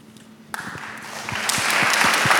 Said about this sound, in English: Seriously, I've never seen a panel that's gotten an applause after every response. So you guys are, yeah, killing it.